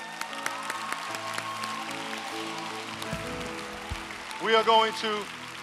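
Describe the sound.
An audience applauds in a steady, dense patter of clapping throughout, with sustained organ-like tones underneath and a loud voice rising briefly near the end.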